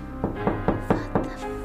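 Six evenly spaced knocks on the wooden back door of a lodge, steady and unhurried, with a low continuous hum of background ambience underneath and no voices.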